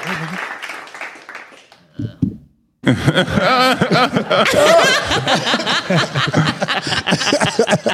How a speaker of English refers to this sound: Yeah, oh, I love the applause.